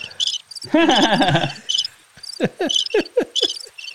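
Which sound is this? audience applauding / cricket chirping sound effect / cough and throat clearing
cricket chirping sound effect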